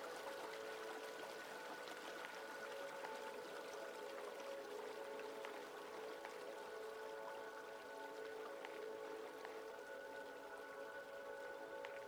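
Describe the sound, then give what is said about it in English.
A steady, continuous rush of flowing stream water, fairly quiet and even throughout, with a faint bubbling texture and no voices. “The sound of the water becomes more amplified.”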